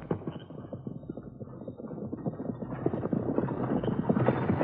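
Hooves of powerful riding horses clip-clop in a steady, rapid rhythm, muffled and lo-fi, growing a little louder and denser toward the end, with no voices over them.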